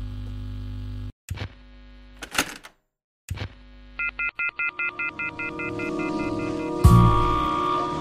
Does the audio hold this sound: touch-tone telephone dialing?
yes